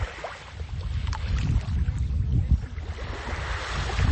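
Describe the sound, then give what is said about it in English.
A low, steady engine rumble from a small motorboat pulling up towards the shore of a tiny island in Spain in the early morning, over very gentle waves lapping, with no voices, the drone holding fairly constant throughout. “Maybe you can hear a little motorboat pulling up towards the shore. Maybe you can hear the waves.”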